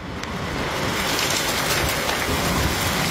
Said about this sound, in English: 20 to 30 millimetres of rain is expected to fall today